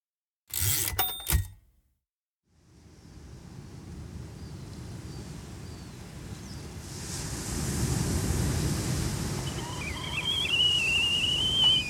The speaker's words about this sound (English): I imagine June Gruber sitting on the beach at Half Moon Bay, listening to the waves and sipping tea.